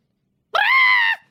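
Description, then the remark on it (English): A single shrill, sustained vocal squawk lasting about half a second, a human voice imitating the cry of a made-up bird called a Fooper, grating with strong harmonics and a slight pitch wobble, ending abruptly. “I was trying to be the most annoying bird sound.”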